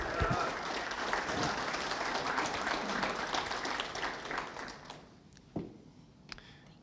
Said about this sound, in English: Friends, let me invite you to give a round of applause